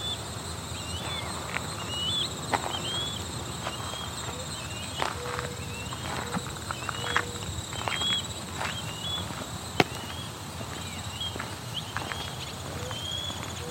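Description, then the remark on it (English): Two ospreys call in a series of short, high whistled chirps repeated every second or so, fairly faint over a steady background hiss with occasional clopping, footstep-like knocks, on a farm in the middle of a park. “You can hear an osprey calling in the background.”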